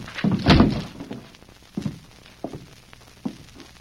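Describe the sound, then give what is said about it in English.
A door is rushed and forced open with a loud, heavy crash and a wooden rattle, followed by three dull thumps spaced about a second apart, with no voices. “Getting close to the door. All right, Tonto. Let's rush the door.”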